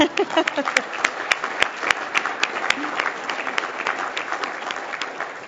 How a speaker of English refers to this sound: You're welcome to clap again.